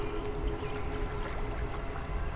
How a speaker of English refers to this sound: stepped inside my pool and proceeded to clean it. Grabbed my net, got out some leaves, some dirt